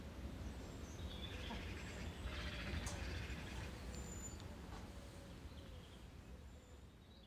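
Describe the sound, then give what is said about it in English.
Evening birdsong: faint, scattered chirps and short high notes over a steady low rumble of background noise, with no voices. “I'll leave you just with that evening bird song.”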